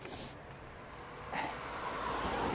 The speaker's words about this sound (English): because there's a lot of noise coming from the road. It's always when the streets are wet, like today after the hailstorm that we had earlier on. It's as if the cars are twice as noisy.